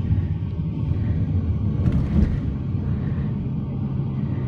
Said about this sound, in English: Wow, we are self-driving, going dead on 30, and now there's some traffic up ahead, and we are slowing down.